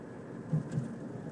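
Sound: car interior driving noise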